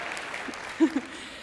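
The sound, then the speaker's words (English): An audience applauds in a soft, steady patter of many hands clapping, with a couple of brief low vocal murmurs rising over it midway through. “Now I'm going over here, and I hope I get claps every time.”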